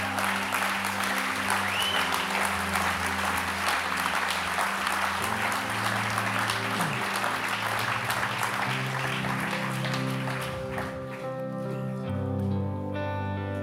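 An audience applauds steadily while people are invited to come down to the front for prayer, a sustained, dense wash of clapping with sustained organ or keyboard chords held underneath; the clapping thins slightly near the end as the music continues.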